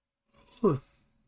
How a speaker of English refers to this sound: Excuse me, I had to yawn because I'm very, very tired.